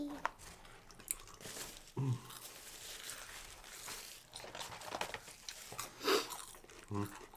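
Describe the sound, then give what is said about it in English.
Chewing and crunching of a crisp empanada, with irregular bites and crackly mouth noises, a few louder crunches standing out near the end, quiet background murmur. “See how it's like crunchy?”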